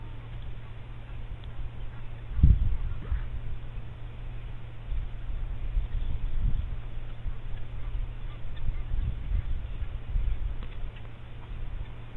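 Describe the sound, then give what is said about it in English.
A steady, airy whoosh of a huge flock of small quelea birds streaming past, continuous, with a low hum underneath and a few brief knocks and calls scattered through. “I do hope the microphone will pick up their whoosh as they pass.”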